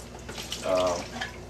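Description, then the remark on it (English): Running tap water flows and splashes steadily through a hatcher bottle that has been taken apart for cleaning, draining out at the bottom, swelling briefly in the middle with a hollow, gurgling rinse before settling back to a softer trickle. “We run it through some water and get the water that's going to drain out at the bottom there.”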